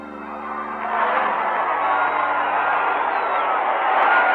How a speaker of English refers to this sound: Maybe you can hear the people screaming down there, ladies and gentlemen. Let's give a listen.